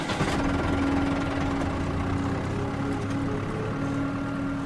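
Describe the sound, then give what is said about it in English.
A heavy diesel tractor engine runs steadily as Traficant pulls the tractor into the barn on his old farm surrounded by cornfields, a loud, continuous low rumble with a droning hum and faint mechanical rattle, no voices present. “He pulls the tractor into the barn the way he has 100 times before.”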